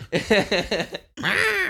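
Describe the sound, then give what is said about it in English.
A person imitates a sea turtle with a quick run of raspy, throaty pulses, then a brief pause and a long, wavering, strained groan, loud and with no other sound. “No, turtles kind of sound like this.”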